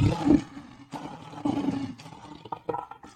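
A lion's roar rumbles out in a few deep, heavy, loud bursts, with rough growling texture and no talking over it.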